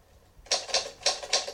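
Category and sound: tool, typewriter typing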